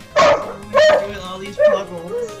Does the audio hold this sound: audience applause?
no